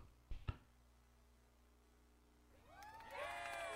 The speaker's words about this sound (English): But see, you could do the yay and applause at the same time. That's typically what I do. Yeah, do both.